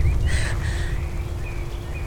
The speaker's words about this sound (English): Turn up that bird song for me, would you? Turn it up as loud as the trees.